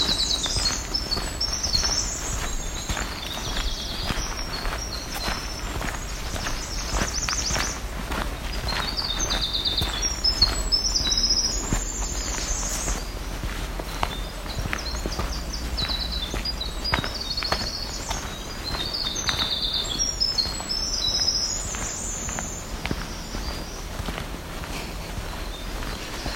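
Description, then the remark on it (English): A black-throated green warbler sings buzzy, high-pitched phrases repeated a few times, over steady crunching footsteps and a low outdoor rumble. “Another black-throated green warbler making that song.”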